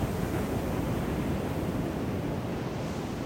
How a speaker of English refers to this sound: And as this ocean water ripples around us, and as this sand below us washes in and washes out, literally changing every single wave of the tide.